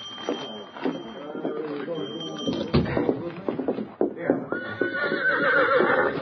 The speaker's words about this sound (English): This is my horse. Steady, Victor. Steady, boy. Golly, it sure is a fine horse.